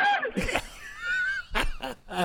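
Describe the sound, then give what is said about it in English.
People screaming in short, breathy bursts, with a drawn-out, wavering high-pitched cry in the middle, heard at moderate volume with a slightly thin, recorded quality. “They're screaming like little girls.”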